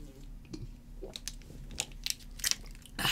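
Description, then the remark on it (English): Wet mouth sounds of someone quickly drinking and swallowing a liquid, a series of small clicks and gulps ending in a louder slurping burst, with no talking. “Damn, I swallowed too quickly.”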